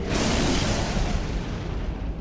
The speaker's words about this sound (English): Oh, what's that? Looks like lightning is headed straight for the radio antenna